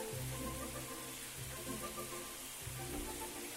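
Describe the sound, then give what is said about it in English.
Shower water runs in a steady, loud hiss, with a low humming drone from the pipes underneath. No one speaks. “Just check the water temperature. There we go. Always check the water before you jump in the shower.”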